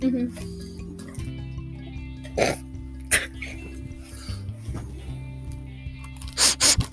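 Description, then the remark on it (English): Several short, breathy sniffs right up against a video game headset microphone, spaced irregularly, ending with two quick loud ones, over a low steady background hum. “Stop sniffing the microphone”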